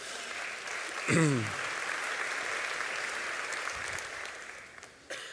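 An audience applauds in a steady, dense wash of clapping that lasts the whole clip, with a brief vocal exclamation near the start.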